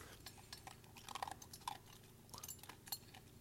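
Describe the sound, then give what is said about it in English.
A dog named Bud crunching dry kibble, with quick irregular bites and soft clinks of a bowl, steady chewing that continues for a few seconds with no one talking. “Crunch that food. Crunch. It's almost gone.”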